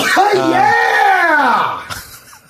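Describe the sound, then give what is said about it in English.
A sneeze's short burst of breath is followed right away by a loud, drawn-out yell that rises and then falls in pitch over about two seconds. It is strong and stands alone with no talking. “likes after he sneezes to just yell out.”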